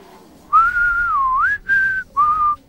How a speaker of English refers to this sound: But then, from the back of the class, a massive whistle came blaring out.